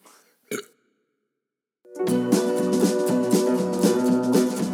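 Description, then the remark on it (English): A single short burp after drinking Keystone Light beer breaks a moment of quiet near the start; after a brief pause, upbeat music kicks in loudly and plays to the end. “Yeah, there's a burp coming in.”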